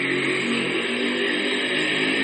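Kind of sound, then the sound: vehicle, motorcycle engine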